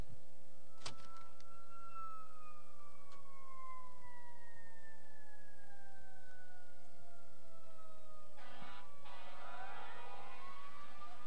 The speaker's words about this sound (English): That's like the 10th fire truck that's going. It's going towards, well, I know what it is. The chicken house.